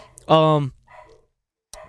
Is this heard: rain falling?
no